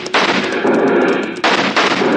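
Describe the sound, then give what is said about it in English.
Loud, overlapping gunfire crackles in rapid bursts, a dense barrage of shots with two sharp onsets, like a chaotic western shootout with many guns firing at once. “Hold your fire.”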